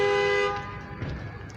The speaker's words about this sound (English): Somebody's honking at me. I think it's a bus.